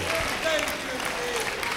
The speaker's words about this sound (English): I'm glad the chaplain is standing clapping his hands.